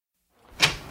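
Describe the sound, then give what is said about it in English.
A front door is opened: a quiet rising rustle leads into a sharp latch click, followed by a brief rumble and a second crisp click at the end, with no one speaking. “I'm at the front door. Right. Hang on a sec. I'll walk down and let you in.”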